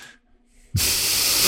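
A brief quiet gap, then a sudden loud burst of steam hissing starts and keeps going steadily, bright and airy, filling the rest of the moment.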